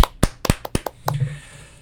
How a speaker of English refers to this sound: But yeah, congrats to Sebastian Vettel. Good job. Clap it up. Yeah, huge.